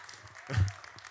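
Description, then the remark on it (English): An audience claps together in one sharp, unified burst, a single loud crack of many hands at once that fades quickly, with no talking. “If you're going to clap, do it together.”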